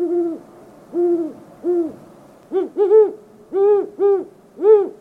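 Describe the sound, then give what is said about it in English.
Great horned owls hoot back and forth in a clear series of deep, soft notes, three lower hoots followed by a quicker, slightly higher run of five, with no talking. “Great Horned Owls Calling”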